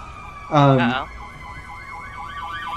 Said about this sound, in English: you start to hear. A siren approaching, and it just seems to be getting louder and louder.